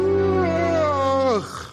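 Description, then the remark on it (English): A voice imitates a long, loud yawn as M'Baku yawns in a retelling of Black Panther: a steady, groaning vocal tone held for over a second that slides down in pitch and trails off into a breathy exhale. “And then M'Baku yawns.”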